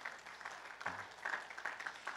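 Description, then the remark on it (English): A crowd applauds steadily after a Christmas message and play, many hands clapping together in a dense, continuous patter that fills the whole moment without any talking. “Can we give God a big clap offering for that?”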